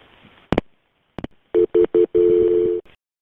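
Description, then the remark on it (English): Over a muffled phone line, a couple of clicks are followed by three quick beeps and a longer steady tone as a call to the Burbank police is dialed, with no one talking. “All right, let me get Burbank PD on the phone with us, okay? See if I can get an operator to help us out.”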